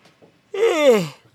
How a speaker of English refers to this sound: Golly, I am sorry. Yeah, I'm just, if I'm going to yawn this much, I really don't want to put anybody through that.